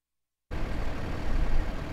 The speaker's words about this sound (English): A fire engine idles in the middle of a mostly empty gravel lot.